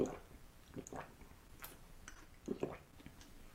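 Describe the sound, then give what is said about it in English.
Quiet ASMR chewing of tapioca balls: soft wet squishes, clicks and smacks at irregular intervals, with a gulping swallow partway through, no talking. “Is tapioca balls or bubble tea? Yeah. Was it the swallowing sound?”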